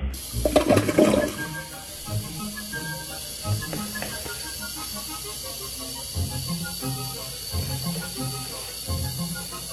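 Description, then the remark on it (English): A toilet flushes with a loud, sudden rush, then water keeps running and gurgling steadily through the drain for several seconds, with a constant hiss beneath it and no voices. “Are you ready for the toilet flush?”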